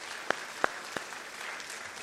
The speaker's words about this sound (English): And everybody applauded before I even asked them to, but they've been serving in Azerbaijan for 20 years doing church planting work, and it's a very hard place to be.